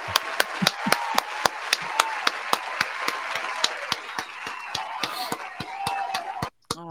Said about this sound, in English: Still clapping.